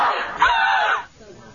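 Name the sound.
horror movie scream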